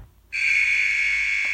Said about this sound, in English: Oh, I think that's the buzzer. Well, that's time for us.